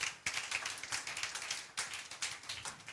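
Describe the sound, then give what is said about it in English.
A crowd claps together for the Lord, many overlapping hand claps forming a dense, crackling patter that swells in rapid pulses throughout. No voices are heard. “Give the Lord a clap of friend.”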